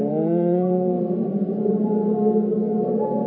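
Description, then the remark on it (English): An audience hums a hymn together, a steady, low, sustained drone of many voices with gently shifting pitches and no words, holding an even volume throughout. “Let's hum it.”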